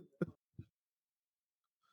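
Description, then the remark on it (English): Two short, abrupt bursts, a sharp cough followed by a softer throat clear, then near silence with only faint rustling at the end. “trying to hold a cough. And I'm like, dog, just cough. You have to cough.”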